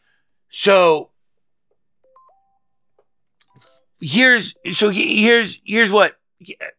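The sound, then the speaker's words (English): A soft, brief two-note electronic notification tone from an iPad, stepping down in pitch, sounds in a quiet gap between bursts of a man's speech. It is faint and over almost instantly. “I have to have this iPad open. I don't know how to fucking turn off notifications here.”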